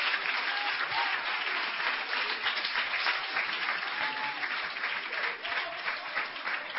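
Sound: audience clapping hands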